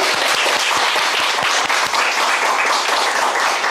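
Sustained applause from a crowd, a dense wash of many hands clapping at a steady, fairly loud level for several seconds with no voices standing out.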